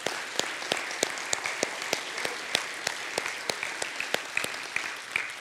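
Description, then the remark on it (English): A crowd gives Jesus a round of applause, many hands clapping steadily in a dense, crackling wash with sharper individual claps popping out irregularly throughout, at moderate loudness and with no voices over it. “Let's give Jesus a round of applause and glory today.”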